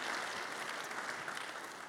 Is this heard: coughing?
no